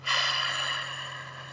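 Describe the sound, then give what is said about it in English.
A single long, airy breath drawn in through the nose during a guided breathing exercise, steady and fairly loud for about a second and a half before easing off slightly, with a faint low hum beneath and no talking. “Take a breath. In through your nose, out through your mouth.”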